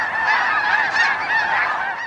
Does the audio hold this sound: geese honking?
yes